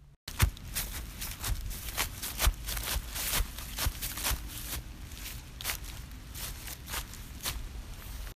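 Close, crunchy footsteps stomp through dry fallen leaves that have not yet been raked up, recorded with a phone held close to the feet, in a steady, uneven rhythm, each step a sharp crackling burst with rustling in between, no voices.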